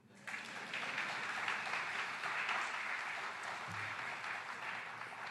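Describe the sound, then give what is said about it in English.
A crowd applauds steadily, a dense wash of many hands clapping that starts abruptly and holds at an even, fairly loud level throughout, with no talking over it. “You can clap.”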